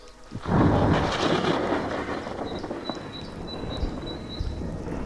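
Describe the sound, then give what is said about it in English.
A loud crack of thunder overhead bursts in after a brief quiet moment, then rolls into a long rumbling roar, with faint rain and high insect chirps continuing underneath. “There's a crack of lightning above.”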